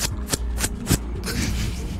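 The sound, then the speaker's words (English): Scissors snipping through thick vines, with four crisp, evenly spaced cuts followed by a rougher rustling stretch. The sound is moderately loud, and nobody talks. “He sort of cuts his way through.”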